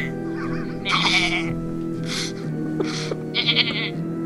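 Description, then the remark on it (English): A goat bleats several times in quick succession, loud, with wavering nasal cries separated by short pauses and a steady low background hum. “That goat kind of has some attitude on that last one, you hear it's, that?”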